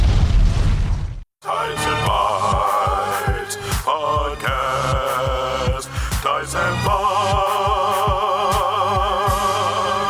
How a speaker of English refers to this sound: do another explosion right here.